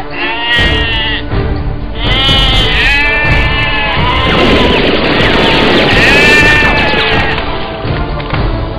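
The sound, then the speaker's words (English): Several sheep bleat loudly in overlapping, wavering cries, one after another, with clattering knocks and scuffling noise rising underneath in the middle. “Give me back my sheep!”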